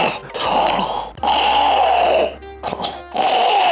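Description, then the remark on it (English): A voice imitates a movie villain's labored, gasping breathing through a mask: long raspy inhales and exhales in a slow, repeating rhythm, loud, with brief pauses between breaths. “No, it's terrifying when he's breathing on you. He's like gasping for like...”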